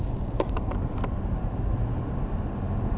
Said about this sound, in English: So you can hear my car driving.